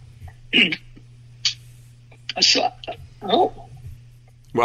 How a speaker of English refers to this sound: I'll cover for you while you clear your throat.